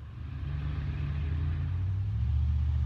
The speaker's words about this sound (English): Man, I don't like loud trucks. One day all this noise pollution will be illegal.